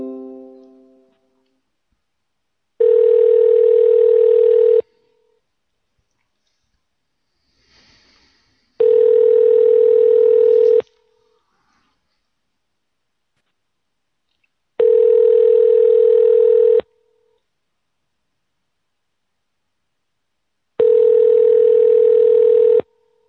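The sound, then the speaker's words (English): A phone call ringing on the line: four long, steady, mid-pitched ringback tones, each about two seconds, separated by even pauses of silence, loud and with no one talking. “Oh, wait, I hear it ringing, but I don't see it.”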